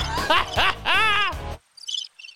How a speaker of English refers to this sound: That's crickets. I've been pressing buttons on the sound pad.